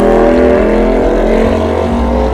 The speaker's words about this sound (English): Yeah, it's just, gosh, I could have sworn that the car that just went by was Harrison.